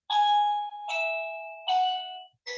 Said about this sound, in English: Someone's ringing my doorbell. Okay, so this is going to be really weird because a few times a week, my doorbell will start ringing and there is nobody there since I moved into this house.